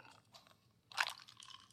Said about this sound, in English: I'm just going to take a sip of my coffee real quick.